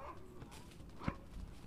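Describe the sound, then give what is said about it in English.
A single short, sharp bark from a dog called Baxter rings out midway, loud against a steady murmur of background noise at Land's End, with no one speaking. “It's a dog called Baxter.”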